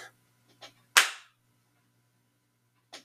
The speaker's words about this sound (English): That was a good clap.